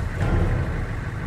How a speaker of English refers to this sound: Shut the engine off. I'll need to be able to hear.